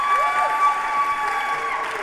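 A crowd claps steadily and continuously, a dense wash of applause with a few voices cheering and whooping over it, sustained at an even loudness throughout.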